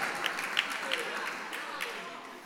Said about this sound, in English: Please clap for that.